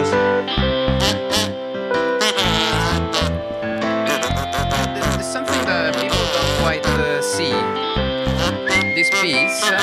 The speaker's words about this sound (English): Has a prog rock part, which is the whistle, the kazoo, and the kazoo is an instrument that I think a lot of people don't understand the power of the kazoo.